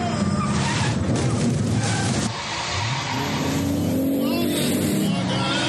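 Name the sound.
car driving fast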